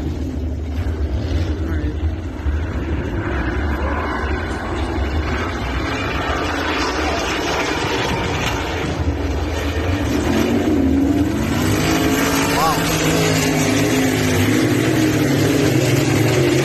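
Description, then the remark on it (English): Racing engines roar steadily throughout, a dense, loud mechanical drone with rising and falling revs as several sprint cars tear around an ice track in New Hampshire, a pitch sweep standing out near the end. “I believe this is racing in New Hampshire though, but it's going to be pretty similar to what you'll see this weekend.”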